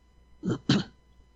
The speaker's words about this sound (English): You're still coughing.